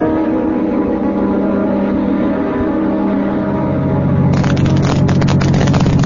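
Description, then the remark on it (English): A car drives steadily along a road, its engine a loud, continuous low drone, with the road noise turning rougher and more textured toward the end. No one speaks. “Well, my deputy and I'll drive out over the route between here and the plant and have a look for him.”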